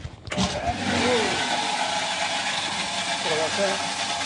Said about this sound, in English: Okay, so before I start up, I'm going to be filling the macerator with a barrel of pumpkin, cabbage.